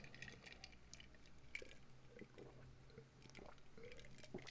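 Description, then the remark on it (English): Someone quietly sips water, with soft wet slurps, small mouth clicks and a swallow or two scattered over a few seconds, and no talking. “I'll take a sip of my water.”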